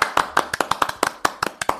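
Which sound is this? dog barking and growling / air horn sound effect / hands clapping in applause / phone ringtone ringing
hands clapping in applause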